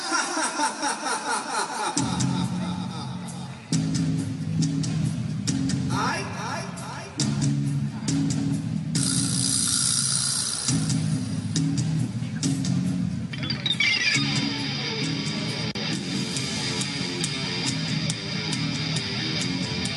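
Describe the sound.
A live band plays a heavy metal song: a brief opening riff, then loud, dense guitars, bass and pounding drums kick in and drive steadily, with a singing voice riding over the music.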